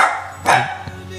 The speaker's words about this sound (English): Sorry, dog went crazy for a second there.